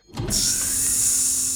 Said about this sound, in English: The door sealed shut behind him.